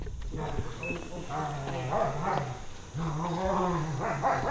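Two big dogs, including an old German shepherd named Maisie, bark and bay at a house in Scott County, East Tennessee, in two long, drawn-out bursts with a short pause between them, over steady outdoor background noise.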